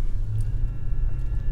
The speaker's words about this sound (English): So let me tell you guys this story while I'm driving to the gas station now, because I need some gas for today.